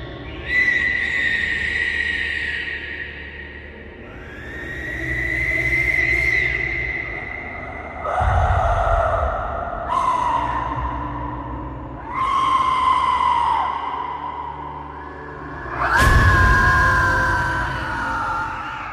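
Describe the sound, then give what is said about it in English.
An Aztec death whistle is blown in a series of about five loud, shrill blasts, each a rasping, human-like scream that swells and wavers in pitch, with no talking. “The Aztec Death Whistle”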